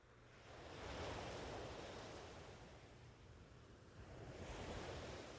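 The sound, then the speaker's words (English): Soft ocean waves wash in and recede in a few inches of water at a sandy shore, a broad hiss of surf swelling and easing twice in slow succession, fairly quiet and steady with no voices. “But for now, you begin to head back to the sandy shore and sit in just a few inches of water for a while, allowing the gentle waves to wash in and out around your legs.”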